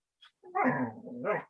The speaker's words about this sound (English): Stop barking at no one.